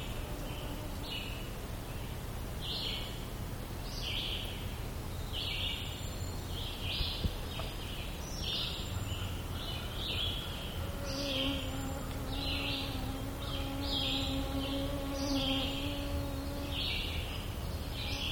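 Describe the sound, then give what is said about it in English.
A loon-like bird call, a drawn-out wavering tone, rises in the second half over a steady, rapid series of high chirps and a low background rumble. No one speaks. “Sound like a loon.”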